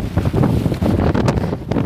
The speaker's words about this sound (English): It brought high winds, surging seas, and heavy rains to the Florida panhandle. The late season storm even prompted a tornado warning for much of the state.